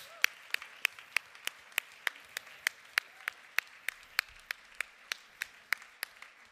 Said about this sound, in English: Will you please stand with me and give the Lord God Almighty a great ovation of applause of thanks for all he has done in this place.